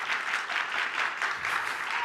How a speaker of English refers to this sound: Can you guys give him a round of applause? A round of applause for Angel.